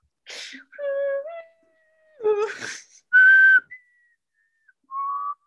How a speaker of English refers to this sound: I can't whistle.